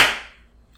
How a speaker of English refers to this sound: Want to start with a clap? Yeah, let's start with a clap. Let's be pros about this. All right, 3, 2, 1.